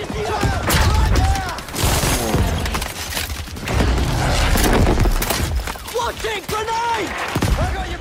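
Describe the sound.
Chaotic battle in the video game Battlefield 5, an example of 3D audio: rapid bursts of gunfire and heavy booms crackle almost nonstop, with soldiers shouting and a low droning rumble of planes overhead, all loud throughout.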